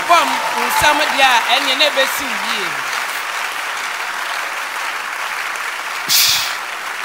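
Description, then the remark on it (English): An audience claps in a steady, dense wash of applause that holds for several seconds. A man's voice rings out over the opening moments, and the clapping swells briefly near the end. “If you are clapping, it shall be well.”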